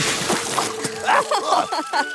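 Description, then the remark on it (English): A forceful blast of water from the water cannons of Belle, a large tank engine, hits Fiery Flynn, spraying and splashing noisily for a couple of seconds, with sloshing and splattering and some brief voice-like cries mixed into the rush. “As Flynn showed off his different wheels, he was suddenly blasted with water.”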